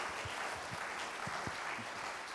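A crowd claps steadily, a dense continuous wash of many hands with a few sharper individual claps standing out, fairly loud and with no talking over it.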